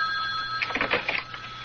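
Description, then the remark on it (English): A telephone rings with a brief, rapid, trilling bell burst over a faint steady electronic hum, moderately loud, with no voices. “Answer it. Answer it. Don't want him to think we've been sitting right on the phone.”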